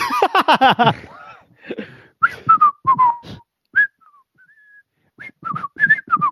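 A person whistles a short, halting tune through a face mask, a string of brief pitched notes with small gaps between them, following a quick burst of voiced sound at the start.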